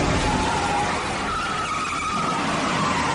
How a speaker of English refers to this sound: this is arguably one of the greatest car chases of all time